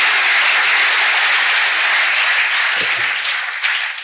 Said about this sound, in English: Why don't you give the Lord a wonderful, wonderful clap of hands?